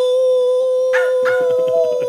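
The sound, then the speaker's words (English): A person imitates a wolf, holding one long, steady, loud howl before breaking into a quick run of short rhythmic yelps near the end. “I'm just calling to the wolf goddess to bestow her greatness upon us.”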